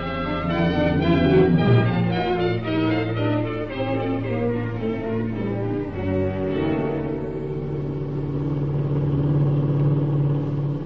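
The engine of a black 1941 Plymouth sedan with a Pennsylvania license, driving in Ohio, drones and revs steadily with a deep, rumbling hum that shifts pitch a couple of times, loud, with no voices.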